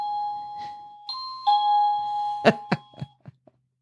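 An electronic doorbell chimes clearly up close, stepping through several sustained ringing tones, then a quick series of sharp clicks and knocks fades out at the end.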